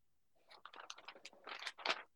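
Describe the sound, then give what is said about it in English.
Crackly rustling of a piece of paper mixed with scratchy handling noise on an earbud microphone as the earbuds are adjusted, a rapid cluster of crinkles building to a louder burst near the end, with no voices. “It's so loud. Oh, I'm sorry. I have a piece of paper. I was adjusting my earbuds.”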